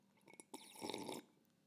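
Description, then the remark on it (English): A short slurp of coffee, a wet, airy sucking sound lasting under a second, framed by small mouth clicks, with no talking. “Hang on, quick slurp of coffee.”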